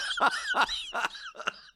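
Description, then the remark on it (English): A dog, Cassandra, lets out four harsh, raspy coughing barks in a steady rhythm, fairly loud, with a hoarse, strained edge to each burst and no talking. “She's a dog.”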